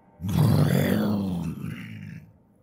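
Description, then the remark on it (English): A wet, guttural growl rumbles low and rough for about two seconds, holding steady before it trails off and fades out. It sounds alone, with no talking. “It was then, just as she came to the sickening realization of what had been used to open the screen, that she heard it. A wet, guttural growl.”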